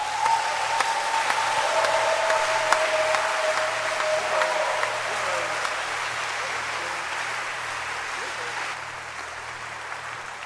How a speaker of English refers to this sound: Do you want to appreciate God with a hand clap?